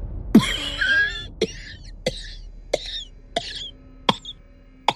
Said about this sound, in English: From inside her own cottage came a man's hoarse cough. It was wet and sickly, with an anguished gasping for air.